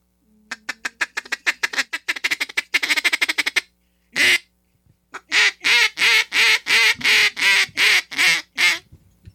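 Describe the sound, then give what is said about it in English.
A double reed duck call is blown loudly, starting with a fast, accelerating chatter of short clucks, then a brief pause and a string of about nine drawn-out, raspy quacks imitating a duck. “I hit my double reed.”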